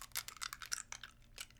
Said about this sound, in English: So, I have a cough drop in, like you can hear.